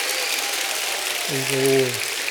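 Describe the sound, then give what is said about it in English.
A crowd claps steadily, giving God a hand clap, a dense, crackling wash of hand claps that fills the whole clip, with a brief sustained vocal tone rising over it near the end. “go ahead, give God a great hand clap before you, say, "Man."”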